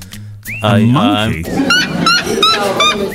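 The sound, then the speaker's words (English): A red-legged bird calls loudly: a wavering, whistled note, then four quick, sharp squawking bursts in a steady rhythm. “I'm going to go for a bird. You're going to go for a bird? Yeah. Yeah? It's a red-legged something or other.”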